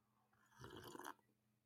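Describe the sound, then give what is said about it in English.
A single wet slurp of coffee being sipped, lasting about half a second against a quiet background, with no talking. “Have a sip of this coffee.”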